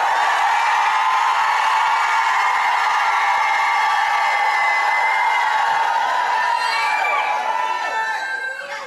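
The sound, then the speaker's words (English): A large church audience, urged by a preacher to shout, roars in sustained, loud shouting and cheering, a dense wash of many voices holding steady for several seconds with scattered higher yells rising near the end. “Apostolic women, if you believe that the man of God is telling you the word of God, shout like you never shouted in your life.”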